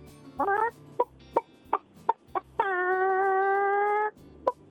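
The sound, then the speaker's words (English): A person imitates a chicken with a few short clucks, then a long, steady drawn-out squawk before a final cluck. The voice is loud and alone, with no talking. “That's a strong That's chicken. A really good chicken.”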